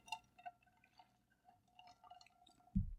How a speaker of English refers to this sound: Yeah, you can always trust water. And on that note, I'm going to take a sip. Sip time.